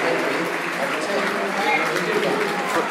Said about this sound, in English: Fred gets a round of applause. Are you ready for Fred?